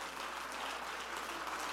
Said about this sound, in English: Oh, clap your hands and praise him.